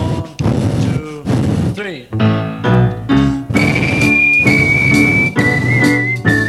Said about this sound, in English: Blow it, boys! Now … and … whistled the solo, this time to …'s satisfaction.